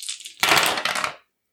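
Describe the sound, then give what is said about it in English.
Five dice rattle briefly for a spirit roll, then tumble and clatter across a hard surface in a loud burst of overlapping clicks that settles within about a second, landing two ones, two threes and a five. “Give me a spirit roll. 5 dice.”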